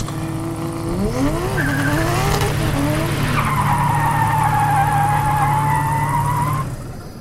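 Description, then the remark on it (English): A car brakes hard, its tires letting out a long, high screech over a steady engine rumble, until the squeal cuts off and the car comes to a stop. “Stop the car! Stop the car!”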